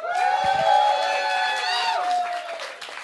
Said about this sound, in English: And how many people here refuse to participate in audience participation? And yet you clapped, which is awesome.